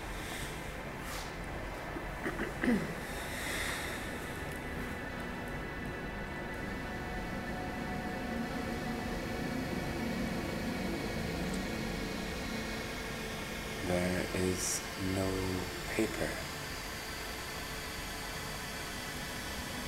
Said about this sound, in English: The white noise has come.